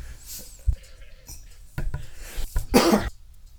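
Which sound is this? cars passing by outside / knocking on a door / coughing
coughing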